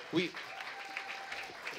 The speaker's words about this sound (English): Yeah, can we all just stand up and give them a really good round of applause?